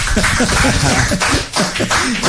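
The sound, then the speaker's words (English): A steady burst of applause, many hands clapping in a dense, crackling wash that holds at an even, fairly loud level for a couple of seconds, with a few voices mixed in. “All right, give him a nice big round of applause.”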